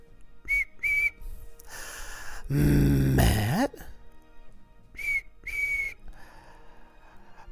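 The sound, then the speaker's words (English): Two quick pairs of short, bright whistle toots, one near the start and one near the end, with a loud rumbling, groaning noise in between and a brief spoken word. “Get that little whistle.”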